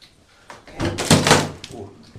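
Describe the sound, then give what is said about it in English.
A stuck door that seems painted shut is shoved and scrapes and thuds heavily over about a second, a broad rough burst of wooden strain and knocking, fairly loud, with no one speaking. “It's like painted shut.”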